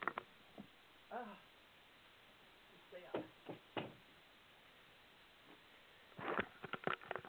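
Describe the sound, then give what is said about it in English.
A door is being closed: a few soft, separate knocks and clicks, then a quick cluster of latch rattles near the end, with a brief faint vocal sound early on. “And let me close my door.”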